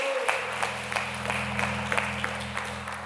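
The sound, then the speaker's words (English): An audience at a church service applauds steadily, welcoming a speaker up to share his life story before communion, a dense wash of many hands clapping at an even level for the whole stretch, with a low steady hum running underneath and no voices. “if you guys will give him a round of applause as he prepares to share his story.”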